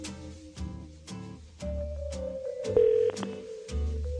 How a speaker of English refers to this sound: Oh, look at those fingers fly over the dials. Someone is just about to hear the phone ring. Ringy dingy.